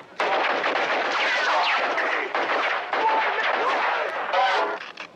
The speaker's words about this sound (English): No, it's like the guy's shooting in the convenience store and he's yelling. All that's muted with machine gun fire.